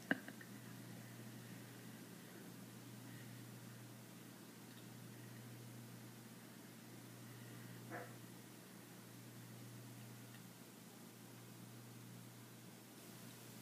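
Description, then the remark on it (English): A puppy yaps faintly in the background, a brief bark near the start and another midway, over a steady low hum and hiss of room noise. Nobody speaks. “You probably hear my puppy barking in the background.”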